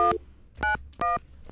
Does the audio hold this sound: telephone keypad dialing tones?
yes